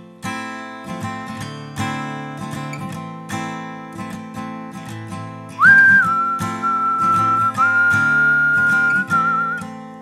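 human body sound, person whistling a tune

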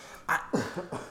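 human body sound, coughing

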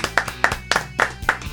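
human body sound, hands clapping

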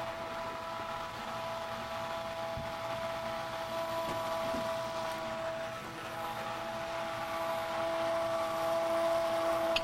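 household object, immersion blender running

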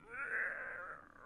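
human body sound, yawn

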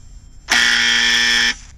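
signal or alarm, buzzer

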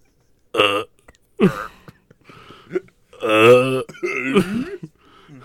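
human body sound, burp

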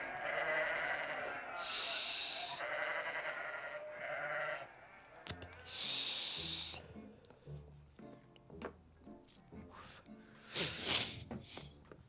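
animal, sheep bleating

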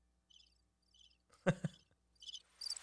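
insect, cricket chirping

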